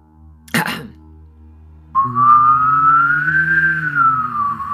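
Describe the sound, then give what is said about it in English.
A brief breathy burst, then a single steady whistle and a low hum sounded together for about three seconds, the whistled pitch slowly rising and falling over the buzzing hum. “I can whistle and hum at the same time, kind of.”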